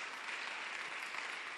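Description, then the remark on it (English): A crowd applauds for God, many hands clapping at once in a dense, continuous wash of sound that stays even in loudness for the whole short stretch, with no voices standing out. “Clap for God. Clap for God. Clap for God.”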